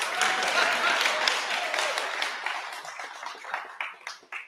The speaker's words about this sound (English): 850 episodes of this damn thing. Thank you. It's like a golf clap.